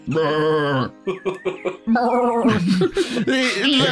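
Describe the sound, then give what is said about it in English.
A person imitates a goat, starting with a long, loud, nasal bleat, then a few short choppy bleats, and finishing with a wavering stretch of bleating. “As you say that, it goes, and then you see the tail lift and.”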